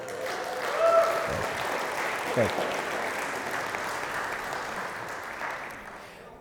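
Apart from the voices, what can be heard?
audience clapping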